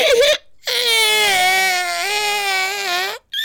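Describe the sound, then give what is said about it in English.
A person imitates a baby crying: one long, sustained wailing cry at a fairly high pitch, loud and steady with a slight dip partway through, preceded by a brief vocal sound and followed by another. “can you give me the best... baby noise, baby crying noise.”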